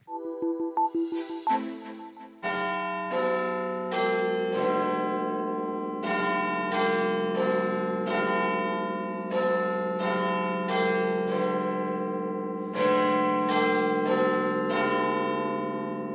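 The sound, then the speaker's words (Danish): The Westminster clock tower bell, one of the world's most famous bells, tolls loudly, opening with a short chime phrase before a long run of deep, resonant strikes about once a second, each ringing into the next, with no voices. “Analysen her handler jo om Westminster, så jeg starter med en af verdens mest berømte klokker.”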